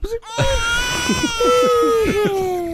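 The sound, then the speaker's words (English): A voice does an imitated Three Stooges-style snore that sounds like a crying baby: after a short breathy start, one long, steady, nasal wail holds a fairly high pitch for over two seconds. “That's my Three Stooges snore.”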